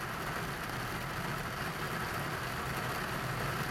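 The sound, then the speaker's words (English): Heavy rain drums steadily on the roof of a parked car, heard from inside as a dense, unbroken roar that stays loud and even throughout, with no voices. “Rain on a biblical scale. A biblical scale. You can't see it, but I'm trapped in the car.”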